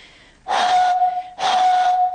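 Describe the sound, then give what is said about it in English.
Two breathy, hollow tones blown across the top of an almost full milk bottle of water, each a steady pitched note wrapped in airy hiss, about a second long with a short pause between, fairly loud. “So to make this vibrate, instead of putting my finger around the bottle top, what I'm going to do, what most people would do when they play this, is blow across the top.”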